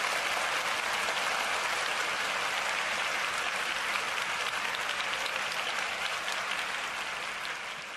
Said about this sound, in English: Western Red Brewing in Paulsbow is now open. Hooray! Clapping noises.